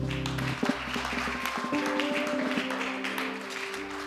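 An audience claps steadily for about four seconds, a dense crackling patter of many hands, with sustained keyboard-like tones humming underneath throughout.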